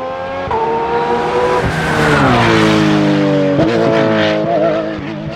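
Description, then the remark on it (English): A car engine roars past, its pitch climbing steadily, then dropping abruptly as the driver shifts gears before rising again. Loud and continuous with no voices, ending with the engine still pulling hard. “And here's one with a gear shift.”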